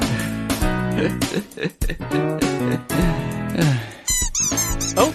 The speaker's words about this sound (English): The squeaky toy is enough to get my dog going.